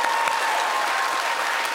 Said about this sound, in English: Clap if you know the Michelin Man.